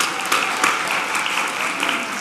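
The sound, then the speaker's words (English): A crowd applauds steadily for girls rock camp, a dense wash of many hands clapping at once with a few sharper claps standing out, sustained at an even, fairly loud level throughout. “Basically, yeah, sure, how about a round of applause for girls rock camp.”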